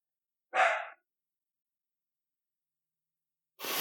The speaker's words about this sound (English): There's a dog barking in the studio.